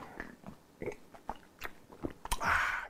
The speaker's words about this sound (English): Let me take a sip on that because that ain't a headline you read every day.